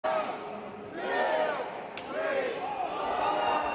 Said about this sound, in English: And I think this is his third and final slap of the event. And it was kind of loud. So let's dial that back a little bit.